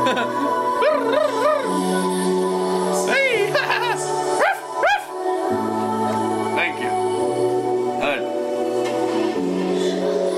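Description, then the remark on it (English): People imitate dogs with a series of loud, rising-and-falling barks and yelps, repeated throughout over a steady droning background tone. “You gotta bark at it with the tree of life sometimes, you know?”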